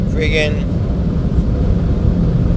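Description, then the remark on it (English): A car wash air dryer blows with a loud, steady roar while drying a car, filling the whole stretch without letting up. A brief muffled voice-like sound surfaces near the start. “Sorry if there's a muffle. I'm getting my car dried.”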